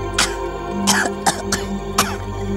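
A string of about five short, harsh, loud coughs in an uneven rhythm over a steady low humming drone: the character Quailman coughing after chalk dust from an eraser gets into his face.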